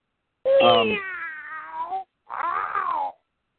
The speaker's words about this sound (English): Is that your meow? No, that wasn't my meow, but I'm going to take care of that meow right now.